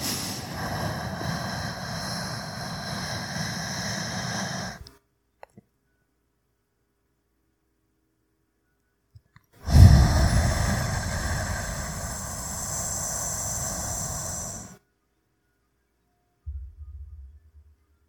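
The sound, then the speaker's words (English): Slow box breathing, about four seconds per phase: a long, airy inhale, a silent hold, then an equally long exhale, another pause, and the start of the next breath. No one speaks. “So something like this, you breathe in for four.”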